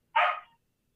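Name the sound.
dog barking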